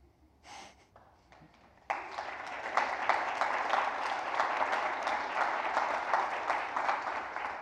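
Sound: applause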